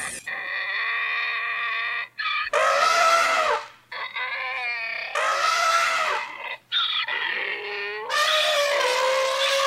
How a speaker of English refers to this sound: And here it is. We now present the presidential debate, interpreted and performed by an elephant and a donkey.